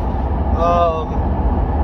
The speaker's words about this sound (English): Okay, so like I said, we're driving in the car, that's why you don't see us on the screen.